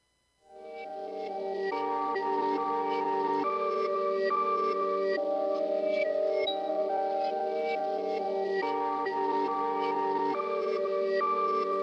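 A rap track's intro begins: sustained, bright synth chords swell in quickly and shift every couple of seconds at a steady, loud level, with no vocals or strong drums yet.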